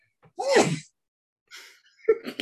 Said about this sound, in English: Oh, I gotta sneeze.